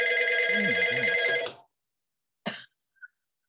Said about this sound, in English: What's hard to believe is it's been so quiet lately, and all of a sudden tonight, of course, wouldn't you know, all the phone calls are coming.